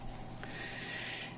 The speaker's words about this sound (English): And I'm sorry for all the noises. I'm not going to edit this one as much. I'm going to leave the sniffles and everything else in here.